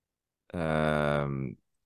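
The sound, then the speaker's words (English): A single low, steady hum lasting about a second, made on a slow outward breath as a breathing technique used during cold plunges, fairly loud, then trailing off into breathy quiet with nothing else around it. “You know, when I breathe out, I can do like a humming sound.”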